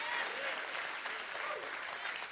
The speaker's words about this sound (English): Come on, clap your hands.